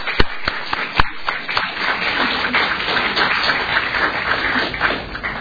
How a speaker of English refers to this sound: I think you deserve a huge round of applause for the work that you've done thus far.